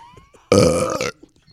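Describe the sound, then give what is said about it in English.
A single loud belch, rough and drawn out for about half a second, standing alone against quiet background murmur. “I didn't have a bell, so I had to belch.”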